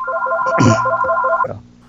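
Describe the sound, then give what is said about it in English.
A phone ringtone plays: a steady electronic tone layered with quick repeating beeps, briefly interrupted by a dull thump, then cutting off abruptly partway through. “And my phone's ringing.”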